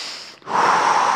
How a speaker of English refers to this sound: You're Lamaze breathing? What's going on in there? I'm just breathing in the grace of God. I'm just choosing to literally, physically slow breathe